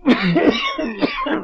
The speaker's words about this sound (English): Why, is the moisture perhaps too much for your cough?